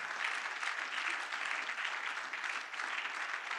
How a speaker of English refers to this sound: Put your hands together for Jesus. Keep clapping. It's a good exercise. You know you are sleeping. Keep clapping. It will wake you up. Keep clapping.